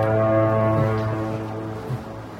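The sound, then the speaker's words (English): A deep, sustained foghorn blast in San Francisco drones steadily with a rich, buzzy tone, sounding somewhat distant and muffled as it slowly fades over a couple of seconds, with no voices. “But the classic shots of San Francisco, and I really wanted to put a foghorn off in the distance.”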